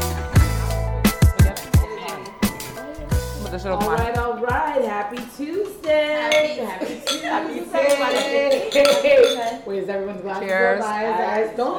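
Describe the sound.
Sharp clinks and rattling of glass as someone fumbles to open a wine bottle, a brief flurry of knocks in the first few seconds, then people talking over it.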